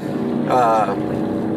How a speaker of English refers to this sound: Damn, motorbike, I don't know if you can hear it. Guy's got it's probably a Harley, maybe, I don't know.